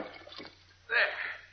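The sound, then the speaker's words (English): Soft trickling water gives way to a sudden, fuller splash and sloshing as a fully clothed man climbs out of the water after jumping in to retrieve a note, fairly quiet, with no talking. “I'll show you as soon as I get out of the water.”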